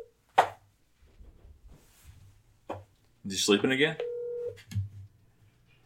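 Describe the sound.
Sharp clicks and taps, then a short steady electronic phone tone like dialing or a ring, heard faintly through a speaker while someone briefly talks over it.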